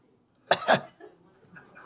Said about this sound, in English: Now, cough, please, sir.